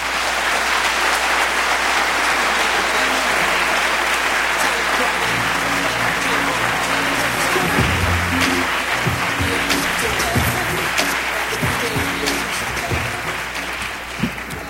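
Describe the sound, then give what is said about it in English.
An audience applauds steadily as activist Rosa Clemente is introduced as a panelist, a dense, loud wash of clapping with faint voices and cheers rising within it partway through. “Please give a round of applause to Sister Rosa Clemente.”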